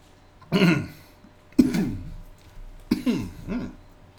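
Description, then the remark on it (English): A person clears their throat four times in a row, each a short, raspy, gravelly burst with brief pauses between, fairly loud against a quiet background and with no talking. “little frog in my throat there.”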